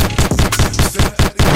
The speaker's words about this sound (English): I need my gunshots louder. Hold on.